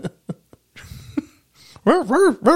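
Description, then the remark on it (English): A man barks like a dog with his voice, starting with a few short gruff huffs and ending in a run of loud, rising-and-falling woofs. “Like he literally barks like a dog.”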